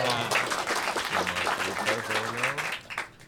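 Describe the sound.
A crowd claps in a steady, dense burst of applause throughout, with voices talking or calling out over it before the clapping thins near the end.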